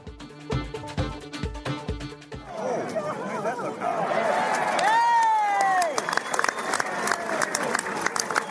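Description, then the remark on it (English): A stadium crowd reacts to a rugby kick that went over after they thought it had been missed, its murmur swelling into a loud, sustained roar with whistles and cheers, after a short burst of rhythmic, pulsing music at the start. “That was the crowd thinking that the kick had been missed yet again, but it went over.”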